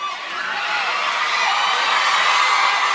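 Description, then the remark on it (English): A large audience cheers and shouts in a dense, continuous roar that holds steady and loud for the full three seconds, with a few higher whoops rising out of the crowd noise, cheering because a man on stage says he is 19 years old. “He just got people just cheered because he's 19.”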